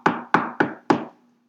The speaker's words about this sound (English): And he's knocking on the door.